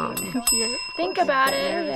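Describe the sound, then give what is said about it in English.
Small bells ring steadily with bright, sustained tones that shimmer throughout, rung by students repeating Wegner's white bear experiment each time they think of the forbidden thought, while voices talk underneath at a moderate level. “It's funny to hear so many bells ringing, but everyone does this.”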